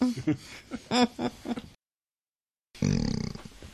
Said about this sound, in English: Dude, what? You let one off. No, I burped. Oh, sorry, that did sound like you let one off. Sounds like a real butt-wibbling one. No, it was trying to be quiet burp, opposed to my usual